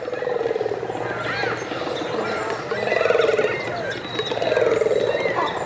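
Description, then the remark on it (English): A dense colony of cormorants fills the air with overlapping croaking, grunting cries, a constant rough chorus of many birds with no pauses. “Their croaking, grunting cries sound more like pigs or reptiles or aliens, anything but birds.”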